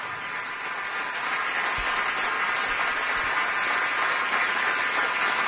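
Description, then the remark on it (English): A large crowd of President Trump's Republican allies applauds steadily in the White House East Room as he holds up a Washington Post headlined "Trump acquitted", a dense, continuous wash of clapping that holds at a loud, even level throughout with no voices standing out. “The White House East Room erupts in applause.”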